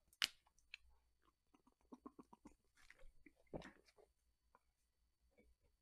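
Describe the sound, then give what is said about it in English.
Someone drinks water: a sharp click at the start, then a string of quiet sips, gulps and wet mouth sounds in an irregular rhythm, with no talking. “I guess I'm just hiccuping for no reason. Drink a little bit of water right now.”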